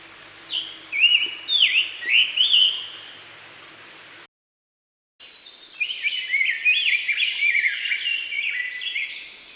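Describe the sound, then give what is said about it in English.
A rose-breasted grosbeak sings a long, rich, warbling run of rapid phrases, clear, following a separate burst of shorter bird phrases and a brief silence. “For those interested in hearing what those bird songs sound like, here's first the scarlet tanager, then the rose-breasted grosbeak, and then lastly the red-eyed vireo.”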